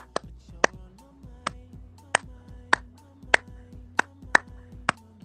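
A series of about nine sharp, crisp hand claps in a steady, slightly syncopated rhythm, an original clap pattern demonstrated in a lesson on how music relates to science, each one bright and punchy, over a low, steady hum with no talking.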